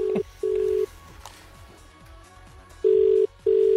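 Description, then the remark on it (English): A brief dialing blip, then a call to a burner phone ringing out: two steady ringback tone pairs separated by a pause, clear, as if heard through the handset. No one speaks. “we managed to get the number to one of them”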